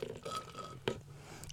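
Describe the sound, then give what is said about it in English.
Quiet sipping through a straw, a few soft slurping bursts with a brief sharp gulp or click partway through, and no one speaking. “I'm going to take another drink.”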